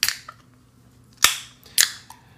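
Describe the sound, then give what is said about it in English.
A can of Kölsch-style beer cracks open to be poured, with a series of sharp, bright metallic snaps and short hissing bursts, four quick pops spaced unevenly over a couple of seconds, with no talking. “But what say we give this a crack? All right, give it a crack and a pour.”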